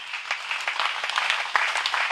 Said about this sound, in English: Let's clap for our brother.